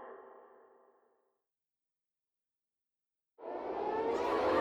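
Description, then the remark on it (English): Air raid sirens wail through downtown Hanoi at midday in sustained tones that fade away into a brief silence, then a louder, harsher siren blast surges back in and holds, filling the space with no voices. “The air raid sirens ripping through downtown Hanoi shattered the midday calm.”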